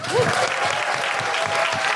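Sustained applause from an audience at Soho Theatre, a dense wash of many hands clapping steadily and loudly, with a faint whoop or cheer rising briefly near the start.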